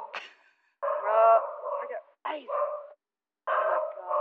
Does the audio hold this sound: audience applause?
no